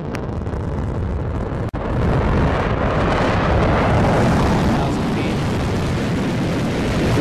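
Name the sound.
rocket engine roaring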